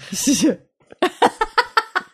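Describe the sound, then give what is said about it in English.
A short, gurgling burp into a microphone with a wavering low pitch is followed by a quick burst of rhythmic, breathy laughter, about six pulses in a row. “We're not burping into the mic.”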